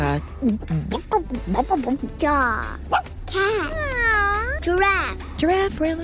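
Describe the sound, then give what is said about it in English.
A mother, asked by a child what animals say, imitates animal sounds, ending in a few long, wavering cat-like meows after a run of short, bouncy vocal noises, fairly loud. “Dog. Cat. Giraffe. You're not going to get it all right.”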